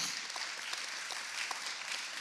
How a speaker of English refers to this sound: Amen. Can we give the Lord a round of applause for that?